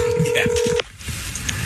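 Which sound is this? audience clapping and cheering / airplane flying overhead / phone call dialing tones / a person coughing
phone call dialing tones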